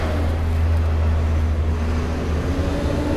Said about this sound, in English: Waiting on a box truck, by the way.